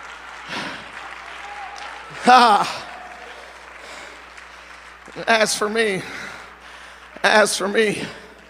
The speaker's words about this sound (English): Someone give God a praise today, if you will. Come on, give him a hand clap of praise today.